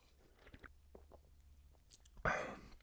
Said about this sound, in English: It's a Japanese beer. It's a Sapporo Black. Never had it before. I'm interested to try. First sip, here we go.